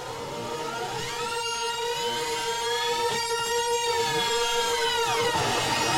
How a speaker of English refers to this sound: And you can hear that there's like a whammy pedal inside of that. Just like you can hear the original fundamental sound combined with a sound that's going squeak, squawk, squeak at the very top of it.